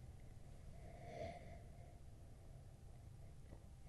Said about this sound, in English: Nice bright aroma, not tropical. The aroma is it's a couple things. It's very malty. It's kind of it's English. It's how do I want to describe it? Let me take another sniff here.